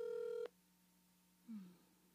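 A loud, steady electronic phone tone sounds for half a second and cuts off, leaving a low hum, then a short falling beep follows, as when an outgoing call connects. No one speaks.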